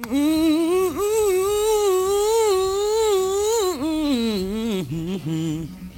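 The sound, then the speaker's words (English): A single voice hums without words in a studio recording, a steady mid-pitched melody that bends and dips through quick runs, continuous for about six seconds with only brief breaks near the end. “There are about five songs in just that humming.”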